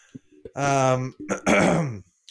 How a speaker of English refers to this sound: So if I'm clearing my throat throughout this podcast, I have my deepest and sincerest apologies ahead of time.